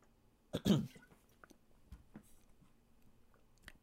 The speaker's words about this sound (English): I remember when I was growing up, I got to take a drink of water real quick.